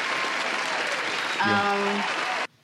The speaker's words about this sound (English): It's a long clap.